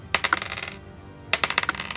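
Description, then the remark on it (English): Two dice, rolled for damage in a tabletop role-playing game, clatter across a hard tabletop in two quick bursts of sharp, rattling clicks, each bouncing and settling before the next throw; fairly crisp, with no voices. “Two dice don't like to sound that.”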